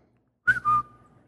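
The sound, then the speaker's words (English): A person gives a short, bright whistle lasting under a second, a quick two-part rising then steady tone, clear against silence, whistling to trigger a phone-finder app. “So she found this app that you whistle.”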